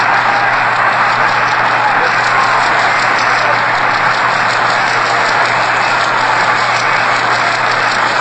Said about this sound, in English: We will stop and let our engineers allow you to hear the applause and the thunderous applause